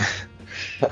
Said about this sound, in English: The sneeze startled him.